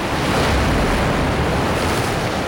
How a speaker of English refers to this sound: The oyster catcher's completely dependent on this marine shoreline for nesting and food, even in winter, when waves hit these rocks with awesome force.